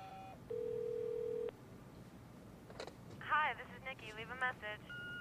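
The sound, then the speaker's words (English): A single steady electronic answering machine beep, about a second long and fairly loud, followed by a pause and then a caller's voice with warbly, phone-line quality leaving a message. “Putting the beep in exactly the right place where it would justify calling back.”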